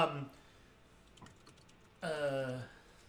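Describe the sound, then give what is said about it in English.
Soft, scattered clicks of several people typing on computer keyboards during a call tap away in an irregular patter, set between brief snatches of a voice at the start and end. “I can hear everybody typing.”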